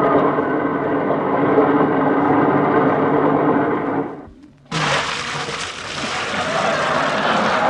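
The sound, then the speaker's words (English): A train carrying a honeymoon couple to Buffalo, New York, rolls along with a steady, loud, low rumbling clatter for about four seconds. The noise then cuts out briefly before a brighter, hissing roar takes over. No one speaks. “Come on, let's jump on the train.”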